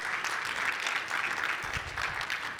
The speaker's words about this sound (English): Can we get a round of applause for Lois?